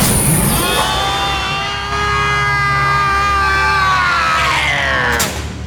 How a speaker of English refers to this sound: You yelled too loud. I'm sorry. Now I have a headache. Oh, I pinned the meters somewhere. I pinned them. Yes, you pinned them and then they exploded.